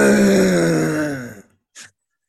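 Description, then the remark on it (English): A man's voice imitates a stadium siren used as a team's playoff battle cry, with one loud, sustained, drawn-out cry that sags slightly in pitch, then cuts off, followed by a short breathy exhale. “Yeah, like, you know how, like, when teams get ready to play games and they got, like, sirens. It's just me going.”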